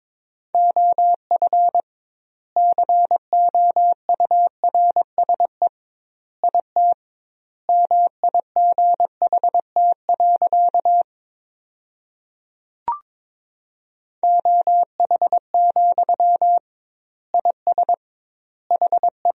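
Morse code practice tones at 22 words per minute with doubled word spacing, sending sentences from the top 500 words: a single steady mid-pitched beep keyed rapidly in short and long bursts, grouped into words with clear pauses between them, plus one brief click partway through. No voices.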